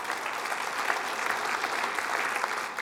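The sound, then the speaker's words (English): Sustained applause from a large church audience fills the space, a dense, steady wash of clapping that stays loud and even throughout with no voices standing out. “Absolutely, that's something worth clapping about.”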